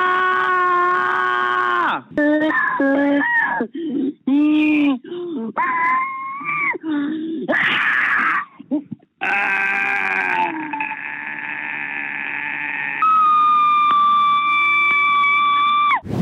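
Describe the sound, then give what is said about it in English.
A rapid series of loud, pre-recorded human screams, one after another with brief gaps, some long and wavering, others short and strained, with no talking between them. “There's even a website where you can listen to over 3,000 pre-recorded screams.”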